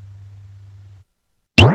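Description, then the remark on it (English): A low, steady drum tone fades out, then after a short silence a sharp click of claves strikes a bass drum whose deep pitch quickly bends upward in a boing-like glissando. “Claves on bass drum, just a quick gliss.”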